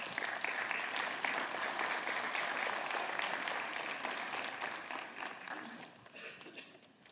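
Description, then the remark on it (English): A crowd applauds steadily for about seven seconds as a woman is invited to the stage to share her story, a dense wash of clapping that stays loud and even before tapering slightly toward the end. “Will you give her a round of applause as she comes?”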